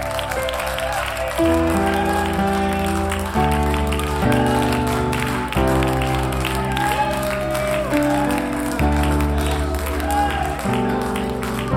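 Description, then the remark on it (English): An audience claps hands in a steady rhythm beneath loud, sustained music with voices singing along, the chords shifting every couple of seconds. “Let's lift our voices and let's clap our hands tonight.”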